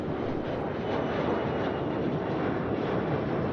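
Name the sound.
airplane engine noise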